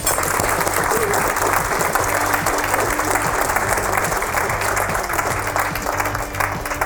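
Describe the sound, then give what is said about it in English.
Sustained audience applause for Steve Paikin at the Toronto Hunt Club, a dense, steady wash of many hands clapping at an even loudness for several seconds, with no voices standing out above it. “A wonderful round of applause for Steve Paikin.”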